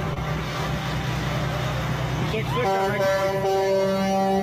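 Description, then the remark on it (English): A vehicle horn blares in one long, steady, loud honk over the low rumble of engine and traffic noise, holding until the end. “Honking.”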